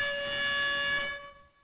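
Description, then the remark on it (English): A single loud air horn blast played as a sound effect at the end of a show, a bright, buzzy chord of steady tones that holds for about a second before trailing off, with no voices. “So let's go ahead and hit the air horn on the show.”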